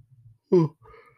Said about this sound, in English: Oh. I'm yawning. Oh, God.